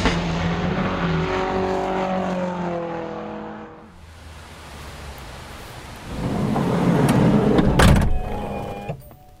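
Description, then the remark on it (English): Electric motors in a VW California van whir with a steady, humming whine as the door is drawn shut, followed by a low rumble, a heavy thud of the door closing, and a short click as the motors lock it. “It's the electric motors closing and locking the door back in the VW California.”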